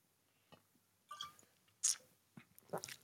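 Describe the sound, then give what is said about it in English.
A sip of Blackened whiskey: a few short, wet mouth sounds, a slurp and a swallow, spaced over a couple of seconds, quiet and without any talking. “Here's a blackened whiskey sip of the day.”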